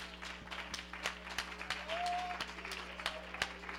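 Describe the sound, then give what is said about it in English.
An audience claps their hands in worship of the Lord in a quick, uneven burst of sharp slaps layered over one another, with a low steady hum and a brief high whistle-like tone underneath. “Oh, clap your hands and worship the Lord.”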